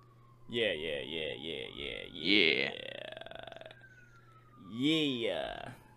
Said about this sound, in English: Sorry, there's like really loud sirens in my background, so I apologize.